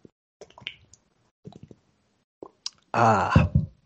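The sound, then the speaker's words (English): Soft, wet sipping and slurping of water come in a few short bursts, then give way to a louder, breathy exhale with a voiced, sighing tone at the end. “One second here as I take a breath and get a sip of water before I jump on into this.”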